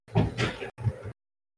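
A heavy vault door, opened only by special appointment, grinds open in two drawn-out pushes, a loud scraping rumble with a low creaking tone, then stops abruptly into silence.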